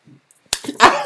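A sharp slap of a woman's hand against the back of a man's neck cracks out once, followed by a brief burst of muffled vocal noise and rustling.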